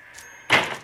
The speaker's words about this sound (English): It looks like she's sending me in. The door's opening.